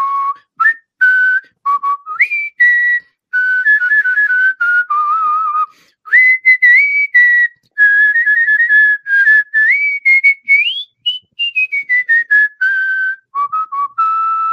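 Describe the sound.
A clear, solo whistled rendition of the Happy Birthday tune, a truncated version whistled for an aunt's birthday, with bright sliding pitches and short pauses between phrases, with no talking over it.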